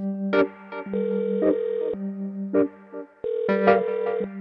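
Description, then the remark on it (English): A phone rings with a melodic electronic ringtone while its owner is away from it, before voicemail picks up, sustained tones stepping between two pitches and punctuated by sharp tapping beats, fairly loud, with no voices. “So literally, when I was in the final stages of making this episode, I was away from my phone for a split second and something unexpected happened.”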